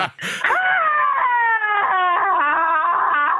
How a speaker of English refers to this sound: Better. Well, it's nice to hear one scream.